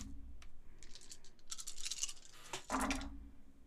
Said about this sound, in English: God, I've never been able to roll so much dice in my life. This is great.